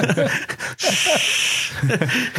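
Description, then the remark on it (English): A voice imitates snoring with one long, rough, breathy snore lasting about a second, fairly loud, framed by short bursts of voiced vocal sounds before and after. “Start snoring and shit.”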